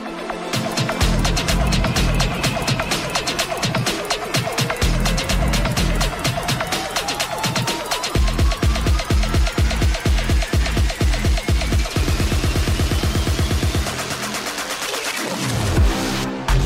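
A loud electronic dance track plays with a pounding, steady beat and heavy bass, a synth sweep rising steadily as the energy builds, with no one talking over it.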